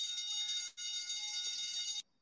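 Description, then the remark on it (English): A loud, harsh electronic alarm buzzer, used as a consumer alarm sound effect, blares steadily, cuts out for a split second, then resumes before stopping abruptly. No voices accompany it. “All right, no offense, but we are gonna ring the consumer alarm.”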